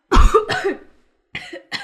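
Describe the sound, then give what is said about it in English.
A fit of harsh, choking coughs after someone chokes: two loud, raspy bursts in quick succession, a short pause, then two more slightly weaker coughs. “Sorry, I choked.”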